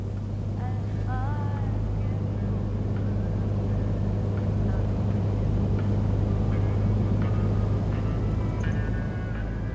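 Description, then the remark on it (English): Steady traffic ambience at an interstate truck stop that sells diesel fuel: a constant low engine drone and rumble fills the scene, with faint scattered squeaks and chirps drifting in over the hum. “I'm at one of those interstate truck stops that sells anything from diesel fuel to women.”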